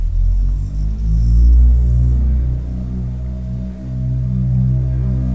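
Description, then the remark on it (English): Deep, continuous engine rumble from heavy trucks idling and moving outside, low and droning with shifting harmonic tones, steady and fairly loud throughout, with no voices. “Doggone trucks out in the... What are they doing out there?”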